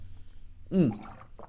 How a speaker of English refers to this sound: Ooh, hydration. So good. Let me take another sip real quick. My God, I love water.